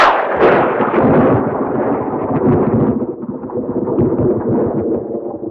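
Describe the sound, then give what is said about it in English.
A loud thunderclap, the Castle Thunder stock sound effect, cracks open with a sharp burst, then rolls into a long, heavy rumble that slowly fades over several seconds, with no voices present. “A well-meaning director might ask for Frankenstein Thunder on the on Castle the lightning Thunder. Flash. Castle Thunder, that's the one.”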